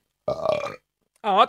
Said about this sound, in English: I need to burp.